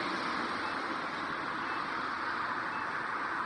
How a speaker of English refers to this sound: And there's a nice car off to the left letting me know. And as soon as they go, I can go.